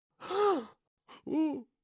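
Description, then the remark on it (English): Two breathy, drawn-out gasps from a human voice, close and fairly loud, each sliding down in pitch like a shocked "ohh," imitating startled animals gasping in horror. “The animals gasped in horror.”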